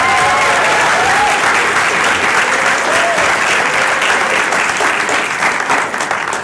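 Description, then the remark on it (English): An audience at the C2E2 convention claps loudly and steadily, a dense wash of applause lasting several seconds, with scattered cheers and voices mixed in as it gradually tapers near the end. “But can we give C2E2 a big warm applause for hosting us?”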